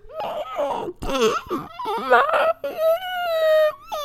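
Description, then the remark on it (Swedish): A voice imitates how a woman sounded screaming during a nightmare, as if someone held her mouth while she tried to scream: strained, wavering high-pitched whimpers in several choppy bursts, ending in one long, steady held cry. No words are spoken. “Som att någon höll för hennes mun och hon försökte skrika.”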